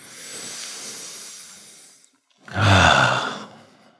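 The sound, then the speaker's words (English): A slow, deep breath: a long, airy inhale, a brief pause, then a louder, rushing exhale like a heavy sigh. No talking. “Yeah, it's a literal breathing.”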